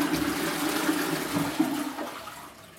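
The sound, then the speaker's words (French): A toilet flushes with a steady, hissing rush of water that holds for a few seconds, then begins to taper off toward the end. No voices are heard. “Je remangeais pour me réconforter, et voilà que la culpabilité refaisait surface et que mes rendez-vous avec la toilette se faisaient de plus en plus souvent.”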